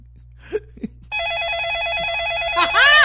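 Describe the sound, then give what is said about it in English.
A telephone rings with a steady, warbling electronic trill as a call to 911 connects. It starts after a second of near-quiet with a couple of soft bumps, loud, growing slightly more intense at the end. “I know that phone call was motherfucking ridiculous.”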